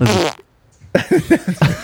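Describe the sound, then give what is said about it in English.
A woman lets out a short, buzzy, low-pitched fart after holding her breath; it rumbles for a moment and stops. After a brief silence, people sitting with the TV playing break into bursts of laughter in quick repeated pulses. “She holds her breath before she lets it out, bro.”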